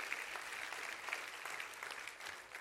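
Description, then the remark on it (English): An audience claps their hands during a church sermon, a dense, steady wash of many overlapping claps with sharp bright bursts scattered throughout, sustained and moderately loud with no voices standing out. “Come on, clap your hands to that.”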